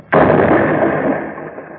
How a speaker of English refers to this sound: The door's blown clean off.